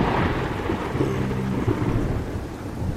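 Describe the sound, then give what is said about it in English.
A deep, sustained rumble of thunder, used as a sound effect introducing a trivia lightning round, rolls through a steady wash of rain, loud and broad, with a brief low tonal swell in the middle and no voices. “And now it is time for the lightning round.”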